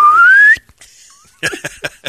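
A loud slide whistle glides steadily upward in pitch for about half a second, then cuts off; after a short pause, brief bursts of voices follow.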